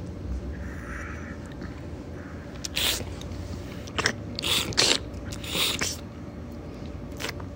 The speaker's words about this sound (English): So have a smell of this one. And if you're not smelling it right away, we might taste it and get a little bit more intensity with that. So let's just do that little sniff, slurp, and swallow.